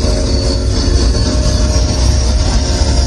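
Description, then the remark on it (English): A loud, steady rumble of a train rolling past, with dense low-end roar, metallic wheel squeal and tonal hum sustained throughout, no voices, played as the intro at a concert. “I hear the train are coming, baby!”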